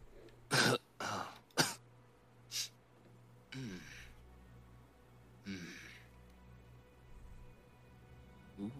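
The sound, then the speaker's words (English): Several harsh coughs and throat-clearing bursts come in quick succession, followed by a couple of softer rasping breaths and a final fainter cough, with no talking. “And you begin to cough, and every time you do, that familiar black cloud comes out of your nostrils, out of your nostrils and your mouth.”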